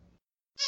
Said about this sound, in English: making squeaky toy noises with it in time with our jokes. So great.